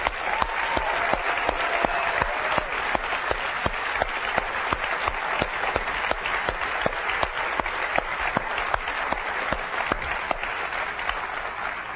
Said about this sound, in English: And there's a lot of folks at Apple that have been working really hard on this stuff for the last 18 months. And I'd like to give them a round of applause, if that's okay.